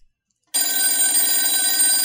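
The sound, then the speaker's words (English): After a short silence, a telephone bell starts ringing, loud and continuous, its bright metallic clatter sustained to the end with no pause and no voices. “you're going to pick up this phone call, and who do you think it is?”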